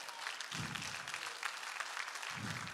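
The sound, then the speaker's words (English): A crowd at a sermon claps steadily, dense overlapping handclaps forming a continuous bright patter, with a couple of low murmuring voices rising briefly beneath the applause. “Somebody ought to applaud that.”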